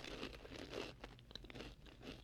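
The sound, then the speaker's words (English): Quiet crunching of nacho dairy-free Siete tortilla chips being chewed: a few crisp, crackly bursts with small clicks between them, in a steady chewing rhythm and with no talking. “I know we don't want to listen to people chew on the podcast, but this is my new segment called Snack Attack.”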